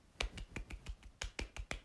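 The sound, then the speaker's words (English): Soft, polite clapping imitating an audience at a live show politely applauding as performers changed position, about ten light claps in a steady, unhurried rhythm, quiet and with no voices over it. “We went to a sex show and the curtains went back and there were two slightly overweight vampires doing it, and then as they changed position the audience went like this politely.”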